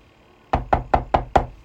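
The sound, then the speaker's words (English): Five firm knocks on a wooden chamber door, evenly spaced in a quick steady rhythm, fairly loud against a quiet background, with no talking. “After about half an hour, Elwyn goes to the room that he was given, and there comes a knock at your chambers.”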